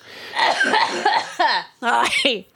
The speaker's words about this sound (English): It's post-nasal drip cough. Oh, delicious. Not lung cough. Oh, okay. It's a different kind of cough.